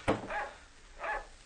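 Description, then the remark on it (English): A dog named Queenie barks twice, two mid-pitched, slightly hoarse barks about half a second apart, following a brief sharp snap at the very start. No one speaks. “Oh, shut up, Queenie. Be quiet, will you?”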